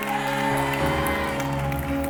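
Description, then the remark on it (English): An audience shouts and claps together in a dense, steady roar, with sustained keyboard or organ tones ringing underneath throughout. “I wish you could shout better for that one. I wish you could clap better for that one.”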